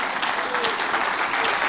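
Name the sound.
audience clapping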